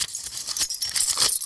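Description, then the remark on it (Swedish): Continuous jangling of a bunch of keys, bright metallic clinks shaken in bursts for a second and a half with no voices. “Hör ni det bläddrande ljudet? Ja, en nyckel.”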